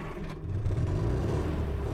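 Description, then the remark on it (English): A low, rumbling early motor car engine runs steadily, its throaty idle rising into a rev after a brief moment and holding there, with no voices. “But then something happened that changed the sound of the Irish countryside forever.”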